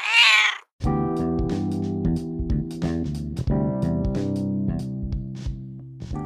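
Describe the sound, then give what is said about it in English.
A single loud meow from a male pet cat seeking attention, high and drawn-out, lasts under a second at the very start, then cuts off and gives way to steady instrumental music with no talking. “Now, I wouldn't actually murder a cat, but if you are a cat lover, cat keeper, you know that sometimes they really test you.”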